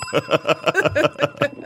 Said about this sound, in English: There are like 8 bells.